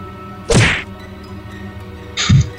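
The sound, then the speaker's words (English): Two heavy, sharp whacks of a stun gun swung across a man's face, knocking him to the floor, each a bright smack with a low thud beneath it, the second coming about two seconds after the first over a quiet background. “Vite swings the stun gun across Dryberg's face, knocking him to the floor.”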